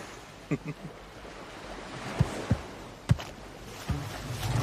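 Water sloshes and laps steadily against a small boat, with a few sharp slaps and knocks against the hull breaking through the continuous wash.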